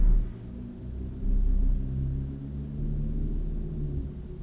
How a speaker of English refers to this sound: Do you hear that car rumbling by? Distantly. Yeah, it's not, it's just rattling my ears.